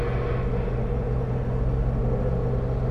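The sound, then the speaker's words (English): Several stock cars race around a track during a practice or qualifying session, their engines blending into a steady, droning low rumble that holds without a break, with no voices over it. “it sounds like we got some cup practice going on out there. Either that or Nationwide's qualifying”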